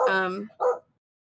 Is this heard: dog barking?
yes